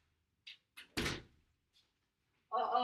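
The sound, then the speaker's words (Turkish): Two light taps and then a heavier thud at a door, followed by a brief pause before someone starts talking; a knock at 10:30 in the evening as a Şeker Bayramı (Eid) holiday gift from the speaker's company is delivered. “Rezalet podcast'ı kapı çalmasıyla”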